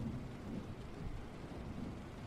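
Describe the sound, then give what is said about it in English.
Steady rainfall with a low, rolling rumble of thunder underneath, a continuous soft wash of noise at moderate volume with no voices present. “looks like we're going without rain tonight, y'all.”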